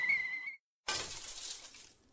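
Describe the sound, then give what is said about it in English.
A light bulb's glass gives a brief high ringing clink, then after a short silence bursts into a loud, bright shatter whose crackling fragments fade out over about a second. No voices. “Army's Special Operations Division dispensed a non-toxic bacillus to the New York City subway system by way of cracked light bulbs.”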